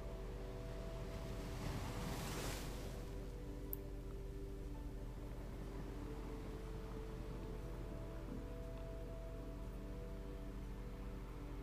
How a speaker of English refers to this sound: Sound of those waves crashing and flowing back and forth mirrors your belly moving from your breath.